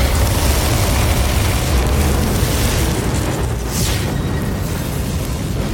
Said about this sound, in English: suddenly a large wing start to move out and all the pieces fly in until it forms a giant clockwork dragon. All the pieces becoming this thing, and it lets out a mighty roar, and it blasts you all with a torrent of fire.